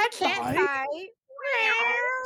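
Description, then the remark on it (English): Two loud, drawn-out cat yowls separated by a short pause, wavering in pitch like an angry standoff between cats. “Cat fight.”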